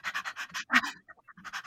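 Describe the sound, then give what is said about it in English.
A dog named Maggie pants in quick, breathy bursts, a rapid run of huffs, one sharper louder breath, a brief pause with faint clicks, then the steady panting resumes. “Our best doggy dog friend, that sweet little bitch, Maggie.”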